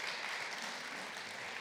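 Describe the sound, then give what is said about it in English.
A crowd applauds the Lord in celebration, many hands clapping steadily in a dense, even wash of sound that holds the same moderate level throughout, with no voices standing out. “I think we'd applaud the Lord once more for this great, great.”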